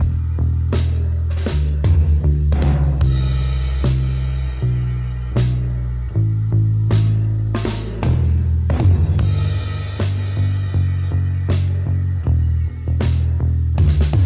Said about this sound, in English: lesser drummers might have approached … first verses with a straight beat, but … treats them as musical theater, well-placed, well-spaced tom flurries, played on low-tuned calfskin heads and drenched with echo.